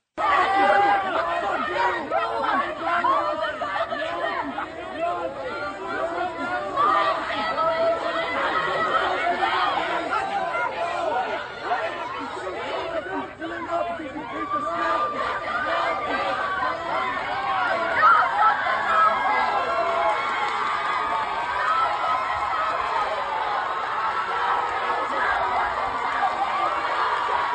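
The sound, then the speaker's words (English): A large outdoor crowd at a pro-Palestinian protest rally at UNC Chapel Hill, dense overlapping chatter and raised shouting voices filling the scene continuously, loud, with occasional cheers rising from the din. “Take a listen to this pro-Palestinian rally. This was at UNC Chapel Hill. And listen to the crowd.”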